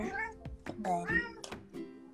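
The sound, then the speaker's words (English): A cat scratching at a door meows, a couple of drawn-out, rising and falling cries in quick succession, fairly loud against a quiet background. “I can hear your cat on the podcast.”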